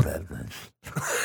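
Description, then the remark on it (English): A voice imitates a fart with a buzzing, raspy blurt, pauses for a split second of silence, then lets out a second, breathier burst. “Oh, yours was more of a whistling, sexy fart. Mine was more like...”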